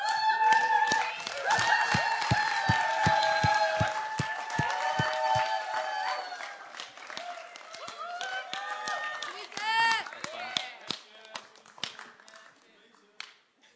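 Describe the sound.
An audience, asked to stand, breaks into steady applause, many hands clapping in quick rhythmic bursts along with cheering voices and whistles, strong at first and gradually thinning out toward the end.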